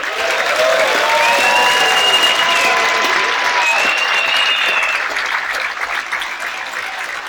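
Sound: audience applause welcoming guest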